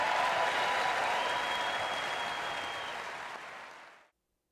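A large crowd of women members of Congress cheers and applauds steadily, a dense wash of clapping with faint whoops that holds loud for several seconds, then fades quickly into silence.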